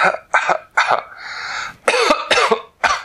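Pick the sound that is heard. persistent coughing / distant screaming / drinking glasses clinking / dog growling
persistent coughing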